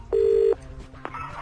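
signal or alarm, telephone call being dialed

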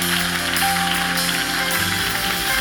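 crowd, audience clapping hands

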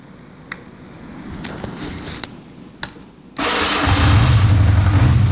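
vehicle, engine starting and idling

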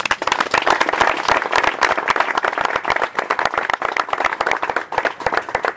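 crowd, audience applause

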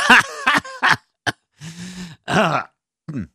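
human body sound, coughing up phlegm

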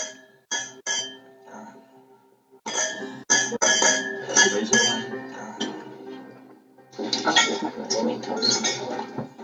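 household object, glasses clinking

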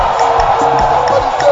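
crowd, audience shouting and cheering

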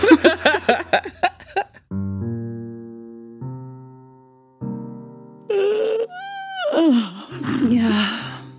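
human body sound, long yawn

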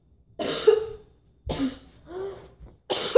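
human body sound, cough

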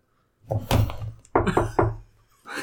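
household object, knock on a door

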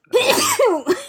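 human body sound, sneeze

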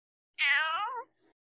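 animal, kitten meowing

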